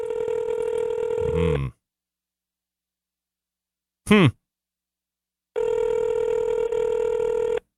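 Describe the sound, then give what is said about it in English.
A phone's ringback tone plays over a speaker in two long steady buzzes separated by a pause, with a brief warbling chirp in the gap between them, while calling a call-in line that goes unanswered. “Ringing and ringing.”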